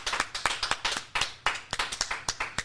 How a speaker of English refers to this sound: Round of applause